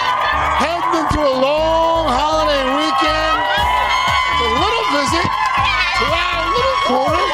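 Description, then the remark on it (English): A loud holiday crowd at Rockefeller Plaza cheers and shouts continuously, with many overlapping voices, high whoops and rising yells blending into a steady, boisterous roar that never lets up. “This is a holiday crowd.”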